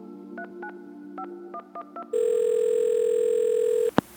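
A telephone being dialed as Buddy Cianci calls Raymond DeLeo: a quick run of keypad beeps over a faint dial tone, then a loud steady ringing tone that holds for a couple of seconds and cuts off with a sharp click.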